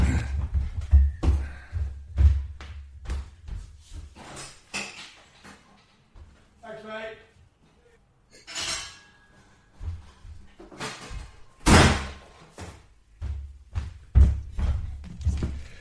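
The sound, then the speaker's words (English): A front door opens and shuts with several thumps and clunks, followed by a latch click and some rattling, with faint household noise around it. “So as a result, as always, when I'm recording the podcast, my front door is going.”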